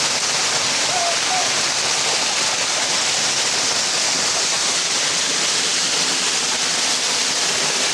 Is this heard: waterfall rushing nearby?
yes